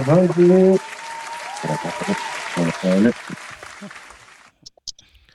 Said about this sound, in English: Clap it up for that shit right there.